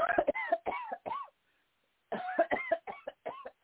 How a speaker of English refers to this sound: And take a deep breath and cough as we teach you.